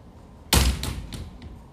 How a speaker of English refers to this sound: And I think that's it, as my window just slammed on its own. I think that was the confirmations of the spirits.